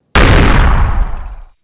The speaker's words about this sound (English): And then there's a large explosion. Yeah. There's a very large explosion.